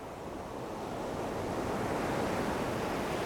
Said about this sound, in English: And that's why I'm currently sailing in the shallow tropical seas off the coast of Laurentia.